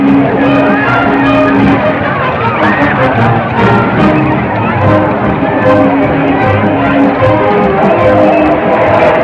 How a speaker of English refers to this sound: Everybody's yelling and cheering and, hey, old chap, it's over.